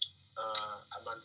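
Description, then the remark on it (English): Faint, steady high-pitched cricket chirping in a backyard at night runs through the whole clip, partly covered by two louder bursts of a lower, buzzing tonal sound in the middle and at the end. “I don't know if you can hear this, but I'm close to nature right now. Yeah, I can hear the crickets.”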